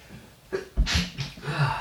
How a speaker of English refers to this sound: I'm going to sneeze now.